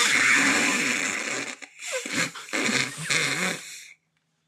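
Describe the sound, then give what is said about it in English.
Loud, raspy fart noises with no talking: one long buzzing blast, a brief pause, then a second stretch of sputtering, flapping bursts that cut off abruptly. “Fart noises.”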